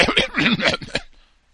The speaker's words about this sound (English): So then the woman is coughing and might want to put your mask on.